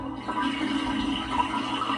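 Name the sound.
toilet flushing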